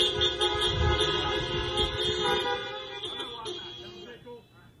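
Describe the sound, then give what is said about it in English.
A chorus of car horns honks together in long, overlapping blasts, loud and sustained, with a low rumble and faint voices underneath before the sound tapers off at the end. “Enjoy the movie. Enjoy Ghostbusters. Honk a lot.”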